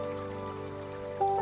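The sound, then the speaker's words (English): Soft, continuous water lapping with a gentle wet patter, heard under a steady sustained musical drone whose tone shifts slightly near the end; no one speaks. “The water continues to lap.”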